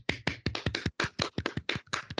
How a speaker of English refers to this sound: Clap it in, everybody.